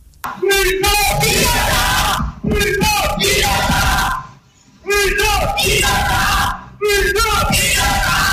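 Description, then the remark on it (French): A crowd of supporters of social activist Bruno Laurette, gathered at the Intermediate Court, shouts in loud, chanting bursts, with several sustained group yells separated by brief pauses, voices blending into a dense roar. “Ce qui n'a toutefois pas calmé les ardeurs de la foule présente, venue soutenir massivement Bruno Laurette et qui croit en l'innocence de l'activiste social.”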